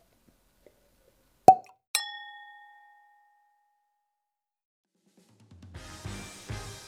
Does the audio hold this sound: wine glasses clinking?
yes